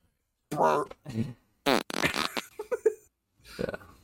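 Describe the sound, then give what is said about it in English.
A fart sound effect: a string of short, buzzy fart sounds, five or six bursts of varying length sputtering out at irregular intervals, loud with brief silences between them. “And while you're at it, add a fart.”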